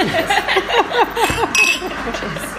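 A brief ringing clink of wine glasses touching in a toast, sounding once amid overlapping conversational voices.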